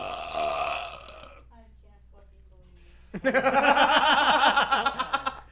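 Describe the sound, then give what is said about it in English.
A loud, rough burp rumbles, then a brief quiet pause with faint voices before an outburst of pulsing laughter from several people. “I haven't had one of those burps in a while. Good thing we got one on the podcast.”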